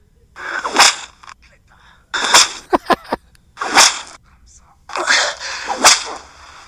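A whip-crack sound effect plays four times from a phone, each a broad rushing swish ending in a sharp snap, with a quick run of smaller cracks after the second one.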